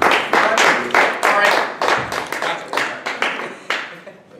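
A live audience claps on cue as a test, about a dozen sharp, bright claps in a steady rhythm that loosens and fades toward the end, with no talking over it.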